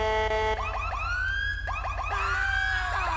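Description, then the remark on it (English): Several police sirens wail and whoop over one another, rising and falling in overlapping sweeps with a steady low rumble underneath, loud throughout. “These are the sirens, by the way.”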